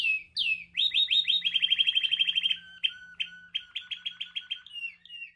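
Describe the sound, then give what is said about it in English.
Caged show birds at a bird show judging chirp loudly in rapid repeated trills and sharp tweets, several calls overlapping in quick bursts with a faint low hum underneath and no one talking. “And if your bird's too loud, well, please. You just need to breed some quieter birds.”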